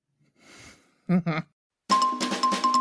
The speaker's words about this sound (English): Yeah, dog pause. Get me the bells.